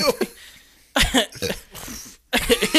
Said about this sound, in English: Burp it up.